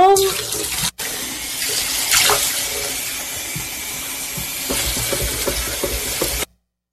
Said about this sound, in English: So they basically were dumping cups of water into a sink and making like a stew or a brew. Did they do this on school grounds? No, they did this in somebody's bathroom at their house.